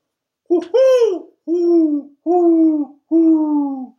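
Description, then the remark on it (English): A mourning dove's soft, hollow cooing: an opening rising coo followed by three steady, drawn-out notes at an even pace, clear, with no other sounds around it. “I realized that boiled owl wasn't an owl. It was a mourning dove.”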